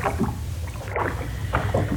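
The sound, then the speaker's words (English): Oars dip and pull through water in a steady rhythm as a boat is rowed hard and fast at dusk, about three splashing strokes over a low continuous rumble of water and wind, with no voices. “Well, row hard and fast. We must outdistance them so that the master may have rest and solitude when we reach the other side.”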